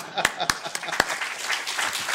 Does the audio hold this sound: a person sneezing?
no